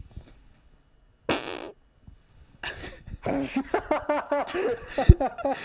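A loud, close-up fart blasts into the microphone, a short raspy burst, followed after a brief pause by an outbreak of laughter.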